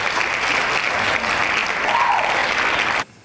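A dense burst of applause, many hands clapping fast and steadily at a loud level, then cutting off abruptly after about three seconds.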